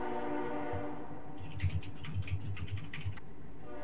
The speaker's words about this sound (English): Fucking train, let me mute my shit.